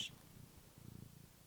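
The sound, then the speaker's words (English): A cat named Kathy purrs softly, a low rumbling hum with a steady pulsing rhythm, quiet and continuous with no voices over it. “Do you want to give us a little purr?”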